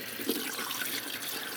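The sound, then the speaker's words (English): A steady stream of water pours into a large jar packed a little over halfway full of chicken pieces, a continuous bright splashing rush that holds an even level throughout, with no talking. “So now I just need to add my water.”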